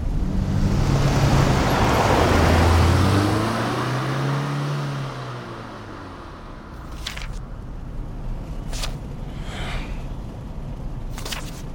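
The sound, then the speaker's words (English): A car drives along a road in light traffic, its engine hum rising and falling over a steady wash of tyre and road noise, with a few sharp clicks near the end. “Davis, how are we looking? Traffic's light. 3 hours at most.”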